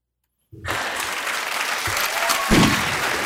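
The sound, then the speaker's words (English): Silence gives way to a sudden burst of steady, dense applause from a crowd, with many hands clapping loudly and continuously for about three seconds. “A round of applause.”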